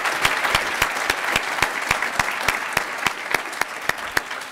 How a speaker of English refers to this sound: How about another round of applause for John Tory and John Duffy?